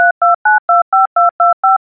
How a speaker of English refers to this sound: All right, now more beep, beep, beep sounds and back to the show.